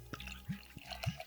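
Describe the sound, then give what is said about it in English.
Freshly poured Export Stout London 1890, a 7.5% stout, fizzing, a quiet crackle of bubbles broken by a few distinct wet pops and drips, with no voices. “It is fizzing. I think that's the fizziest sound we've had.”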